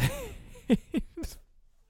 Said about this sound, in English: And I hear the cat, but he's below my feet. There he is. Come here.